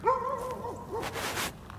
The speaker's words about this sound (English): So she's barking again.